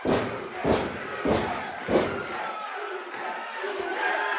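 A wrestling arena crowd roars and applauds as wrestler Hacksaw Jim Duggan appears, with four loud rhythmic thumps or chant beats about every half second at first, then a steady wash of cheering and clapping.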